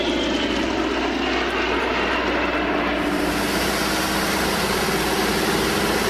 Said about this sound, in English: That's the Corsair, the whispering death. Whispering death, yeah. These are or whistling, good. Whistling death.